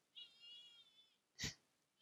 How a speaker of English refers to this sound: This cat's not fucking around. He likes to sing. Can you guys notice?